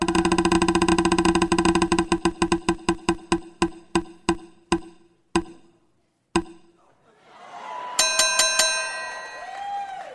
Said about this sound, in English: Let's spin the wheel.